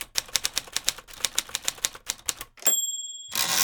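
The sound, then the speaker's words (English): A mechanical typewriter clacks through a quick, steady run of about twenty keystrokes, then a bright bell dings and the carriage slides back with a loud ratcheting sweep, clear. “You rattle things off with a typewriter. Okay, it was a mechanical device that you could produce letters with.”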